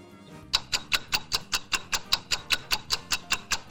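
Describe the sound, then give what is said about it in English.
A ticking clock counts down with sharp, evenly spaced ticks, roughly five per second, starting after a brief pause and continuing steadily and prominently, with no voices. “Maybe it'll come to him. Let the clock play out.”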